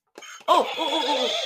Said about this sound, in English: I heard a horse.